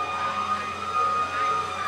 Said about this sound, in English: How much can you hear me over the sirens?